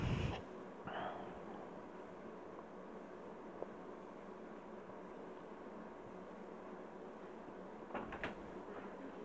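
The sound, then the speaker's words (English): Doors slide and close with a soft thump at the start and a brief swish just after, then a steady low hiss until a couple of sharp knocks near the end. “A breeze from the closing doors sent a layer of dust into the air, and my coughing sounded loud and forced into the quiet space.”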